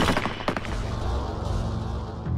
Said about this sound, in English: The deafening explosion of the 8 rifles was the last thing Ahmed heard.